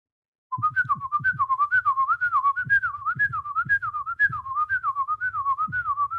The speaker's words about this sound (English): Gives a hint by simply whistling like 2 seconds of a tune.